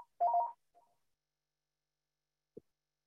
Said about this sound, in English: I'm sorry, someone's ringing my doorbell. Give me one second. I'm so sorry